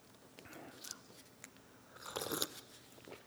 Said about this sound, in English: Slurpy. Okay, note to self, don't slurp.